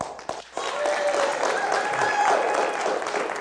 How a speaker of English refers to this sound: It was because you clapped with authority that time. That's what it is.